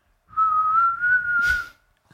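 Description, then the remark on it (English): A person whistles with hands held up to the mouth without touching it: a single sustained whistle held steady for about a second and a half, a clear high tone rising slightly in pitch, fairly loud with a breathy burst near the end. “You held your hands up to your mouth, but didn't make any contact and whistled.”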